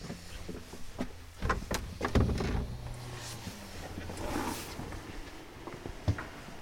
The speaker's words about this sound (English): You can hear the dehumidifier working